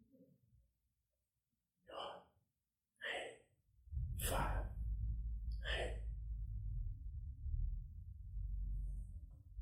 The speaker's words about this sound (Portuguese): Uma última teoria para hoje, somente para hoje, é que essas quatro letras, elas são simplesmente o som da respiração.